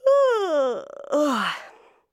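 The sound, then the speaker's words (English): A person does a long, theatrical yawn: a drawn-out voiced moan sliding downward, a creaky rattling middle, then a breathy second swell that fades out, about two seconds in all. “Others simply yawned.”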